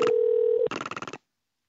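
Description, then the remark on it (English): A voice imitates a rotary phone: a steady hummed dial tone for about half a second, then a quick burst of roughly eight rapid, buzzy pulses like rotary pulse dialing, fairly loud. “Been working on my impression of a rotary phone pulse dialing, and it goes gross.”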